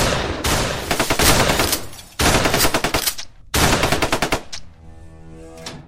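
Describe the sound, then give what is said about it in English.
Rapid bursts of automatic gunfire laid down as cover fire crackle in three sustained volleys separated by brief pauses, loud and sharp, ending with a few scattered shots and a faint ringing tone as the firing trails off. “Cover fire. Keep them in there.”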